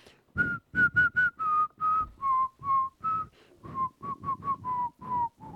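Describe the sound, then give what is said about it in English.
Someone whistles a short, lively tune alone, with clear rising and falling notes in quick bursts, fairly loud, with no talking over it. “which means I need to whistle a little bit.”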